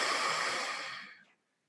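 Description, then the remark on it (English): One long, deep breath out, taken deliberately as part of a deep-breathing pause, a steady airy rush of air that holds for about a second, then tapers off and stops, with no talking. “Take two deep breaths with me.”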